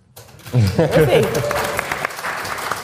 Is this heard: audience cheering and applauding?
yes